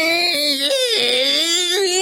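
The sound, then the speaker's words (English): A voice imitates the whine of a petrol car's reverse gear: a loud, steady, nasal tone held for about two seconds, its pitch wavering and dipping slightly before rising again. “And you know that usually the reverse gear on a petrol car is the most whiny.”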